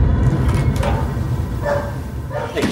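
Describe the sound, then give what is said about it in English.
A dog left waiting outside, where dogs are not allowed in, barks several times in short, separate bursts at moderate volume over a steady low background rumble. “Hey, no dogs allowed in here. He'll be waiting outside.”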